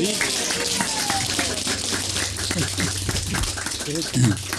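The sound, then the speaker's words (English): Steady audience applause, a dense crackle of many hands clapping that holds evenly for the whole few seconds, with some murmuring voices faintly beneath it. “Yes, you can applaud.”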